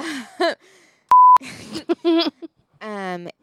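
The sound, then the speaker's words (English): A loud, steady electronic censor bleep cuts in briefly at a single pitch, surrounded by voices talking and laughing before and after it. “Beep.”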